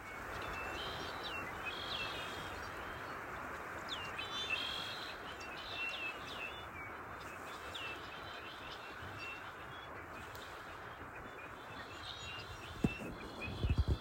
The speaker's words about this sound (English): The attached sound recording is of a mass of red-winged blackbirds, which gather seasonally in the reedy marshlands here.